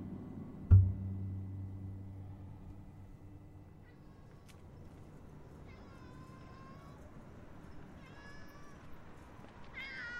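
An alley cat meows several times in a row, drawn-out wavering cries coming in bursts toward the end, heard over a low background rumble after a single dull thump at the start.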